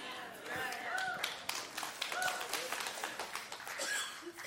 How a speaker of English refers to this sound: It was better than your clap. No, it's all right. Too late.